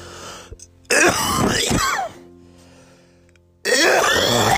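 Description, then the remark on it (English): Two loud, rough coughing bursts, harsh and throaty like a heavy throat clear, separated by a brief quiet pause with no talking. “That's your HMO cough right there.”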